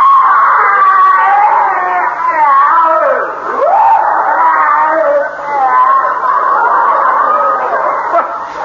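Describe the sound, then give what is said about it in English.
A loud, drawn-out scream of pain, its high pitch wavering and bending, sustained almost without a break for several seconds, with one brief swooping dip partway through. “Funny, it sounded exactly like someone in pain.”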